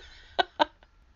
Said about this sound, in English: I just burped. I'm sorry.